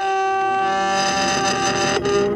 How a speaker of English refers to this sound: he uses a spell, which causes the tip of the Dragon Slayer spear to glow red and then white. I love the sound effect here, too, of mm-hmm. the thing slowly heating up. Like the metal, like, screeching from the sudden change?